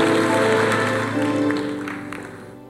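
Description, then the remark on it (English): A church audience claps together at a preacher's call over steady, sustained organ-like music, the scattered hand claps fairly loud at first, then gradually fading toward the end. “Clap your hands and say, "I receive it."”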